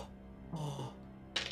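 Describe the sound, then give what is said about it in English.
Dice clatter and roll across a hard tabletop during a tabletop game in a short rattling burst, followed a moment later by a sharper click as they settle; the roll comes up a miss. Fairly quiet, with no voices. “The dice, my dice are clearly helping you.”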